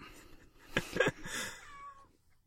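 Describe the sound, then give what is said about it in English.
A male cat lets out a loud, drawn-out meow, rising and then trailing off over about a second and a half, with faint background noise around it. “Shut up, cat. The cat's being real loud, and is also a cat, so I can't hold that much of a grudge.”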